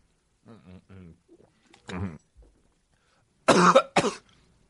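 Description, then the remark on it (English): A person clears their throat with a few short, voiced grunts, then lets out two loud, harsh coughs in quick succession. “I'll cough on you motherfuckers, dude.”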